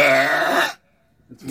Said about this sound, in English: And I think we've got the burp ready. Let's have a listen to the loudest burp by a woman ever recorded.